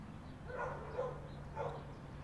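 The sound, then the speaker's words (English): Two old dogs bark a few times while pawing at visitors' legs, short muffled woofs separated by pauses over a low background hum, with no one speaking. “As Mum and I get ready to leave, the woman gives us a sprig of spearmint from her garden, and her two old dogs paw and bark at our legs.”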